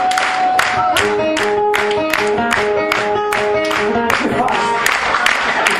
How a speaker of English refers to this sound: You guys started. 1, 2, 3, 4, clap.